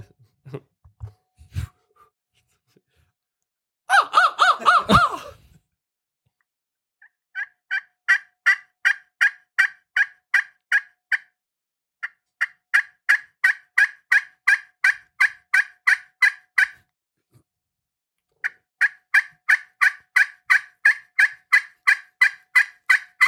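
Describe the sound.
A turkey call rapidly sounds hen yelps in several long rhythmic runs of sharp, evenly spaced notes, clear, after a brief loud raspy burst near the start, with no talking.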